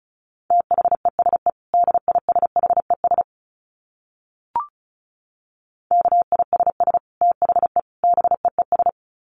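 Fast Morse code at 35 words per minute: a steady mid-pitched tone keyed in rapid dits and dahs, two runs split by a pause with a short blip between them.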